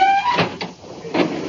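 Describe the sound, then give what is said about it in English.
A card cabinet drawer slides out with a short squeak followed by a few rumbling, scraping bursts of wood on wood, fairly loud, with no one talking. “In the card cabinet, United States. Oh, all right. Thank you. Now, this is the time I pull them out the slow.”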